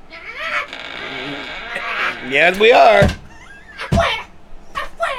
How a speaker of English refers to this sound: Wow, there are a lot of cats here.